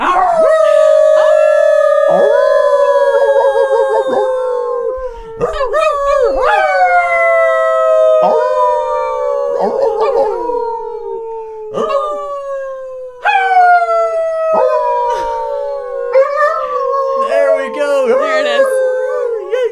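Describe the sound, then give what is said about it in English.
A hound dog named Charlotte Ray howls in a long series of drawn-out, wavering cries, each sliding downward in pitch, with brief breaks between them; the howling is loud and continuous for the whole stretch. “Send off by the hound beast, Miss Charlotte Ray.”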